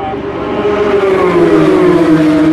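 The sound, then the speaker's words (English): Loud, steady whine of two Toyota prototype race cars driving in convoy at Le Mans, the pitch sliding gradually lower as they pass by, with a broad roar underneath and no one speaking. “The two Toyotas are actually driving around in convoy at the moment, in a sort of procession of two cars, because they have such an advantage over the number three Rebellion, which is running third, that they can do that.”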